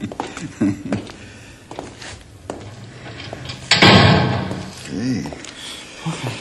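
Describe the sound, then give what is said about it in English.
A heavy door thuds shut and is locked with a loud, broad slam midway through, followed by a brief rattle as it settles. Voices murmur before and after the door. “You take no chances with that door, do you”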